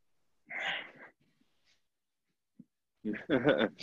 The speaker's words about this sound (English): Excuse me. Coughing on this soda. Sorry.